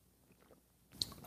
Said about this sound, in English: I like coffee. Now join me for the unparalleled pleasure, the dopamine hit of the day, the thing that makes everything better. It's called the simultaneous sip, and it will be sipped around the world. Now, go.